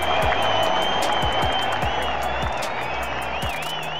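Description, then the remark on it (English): A crowd applauds and cheers loudly, dense clapping filling the whole stretch with shouts and whistles rising above it, steady and sustained for the full few seconds. “And the crowd goes wild.”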